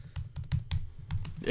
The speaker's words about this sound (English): Yeah. Furious typing. Yeah. You're the angry typing.